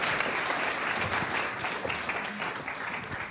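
An audience applauds steadily, many hands clapping together in a dense, bright wash of sound that holds at an even level throughout before easing slightly at the end.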